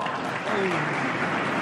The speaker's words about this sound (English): Yeah, not as much clapping this time around.